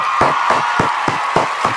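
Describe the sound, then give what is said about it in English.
Six or so sharp hand claps in a steady, fairly quick rhythm, loud and even, over a constant hiss of background noise with no talking. “So, you clap that up?”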